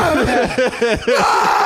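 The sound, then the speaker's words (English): A loud anguished scream from a single voice over the loss of a child, breaking into a few sobbing, pulsing cries before trailing off, with no words spoken. “outstanding scream in response to dramatic loss of a child.”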